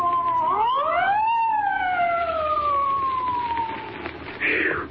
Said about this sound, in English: there's a police car coming up.